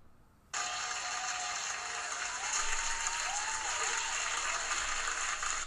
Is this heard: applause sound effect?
yes